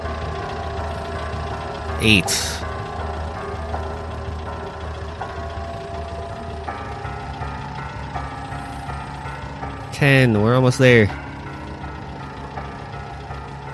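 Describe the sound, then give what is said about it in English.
A truck engine drones steadily throughout, a low continuous hum at moderate volume, while a person speaks briefly over it and a couple of louder vocal bursts rise above the rumble. “Alright, how do I stop the truck?”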